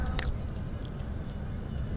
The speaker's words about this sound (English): I'm eating Pop Rocks. They are tropical punch flavored.